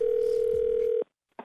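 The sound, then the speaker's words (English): A telephone line rings with a steady, loud, mid-pitched ringback tone for about a second as a prank phone call is placed, then cuts to silence before a brief faint burst of sound. “But right now, it is time for the nephew in today's prank phone call.”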